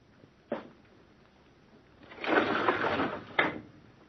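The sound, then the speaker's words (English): A window slides open: a sharp knock, then a sustained wooden scraping rumble for about a second, ending in a firm thump, with no one speaking. “Anything else you want of me besides opening this window, Uncle?”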